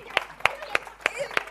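Five sharp handclaps in a steady, slow rhythm, evenly spaced and fairly close, with a faint murmur in the background rather than a full burst of crowd applause.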